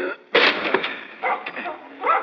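A door is forced open with a heavy chair: one loud, splintering crash, then a rough clatter of debris and a few scraping thuds settling over the next two seconds.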